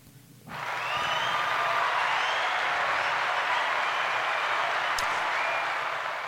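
A burst of hand clapping starts abruptly and holds steady as a dense, sustained wash of applause, loud, with no talking over it.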